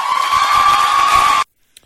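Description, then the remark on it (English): A loud, sustained wall of high-pitched cheering and shrieking from a crowd of young women in Riverside, California, holding steady for over a second before cutting off abruptly into silence. “What you can hear is a lot of women cheering. A lot of young women cheering.”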